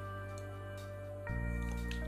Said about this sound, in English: I have to learn to drink water at the 11 minute point, I think.